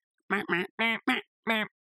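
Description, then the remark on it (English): Five loud, nasal duck quacks in quick succession, clear, with short pauses between them and a slightly longer gap before the last one. No talking. “You got your duck.”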